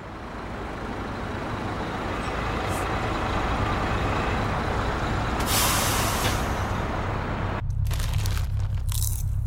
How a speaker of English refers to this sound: it's a friggin' garbage truck.